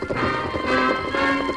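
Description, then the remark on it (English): Horses ridden by two riders gallop out of a barn in a rapid, steady patter of hoofbeats, loud and continuous throughout, layered over a sustained tonal hum. No one speaks. “As Amy and Glenn rode out of the barn, the sheriff shouted to his men, "Hold your fire!”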